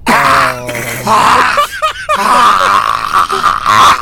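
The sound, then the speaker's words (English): A voice imitates a cat retching, with a string of loud, strained groans and heaving grunts, rising and falling in pitch, broken by short gagging catches and gasps. “And my back starts heaving like a cat.”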